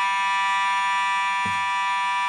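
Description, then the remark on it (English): A fire alarm blares continuously in a studio, a loud, steady, harsh buzzing tone, with a brief low thump near the end and no voices. “Unfortunately, we're experiencing an alarm here and a fire alarm here at our GPP studio.”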